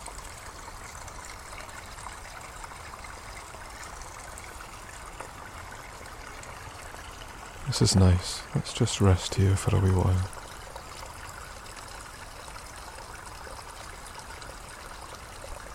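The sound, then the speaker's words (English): Steady trickling water from small waterfalls runs throughout, splashing at a moderate level. About halfway through, a person speaks briefly over the flowing sound. “although these are small waterfalls, they are still waterfalls and just as integral to the environment around us.”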